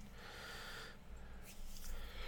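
A quiet, drawn-out yawn, a breathy exhale with a soft nasal, snort-like edge, heard alone over a low steady hum with no talking.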